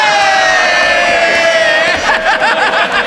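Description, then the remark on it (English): A man heckles and shouts in a parliament chamber during questions to the Prime Minister, over a loud, continuous roar of many voices, the din steady throughout, with no clear words standing out. “He's shouting at the moment.”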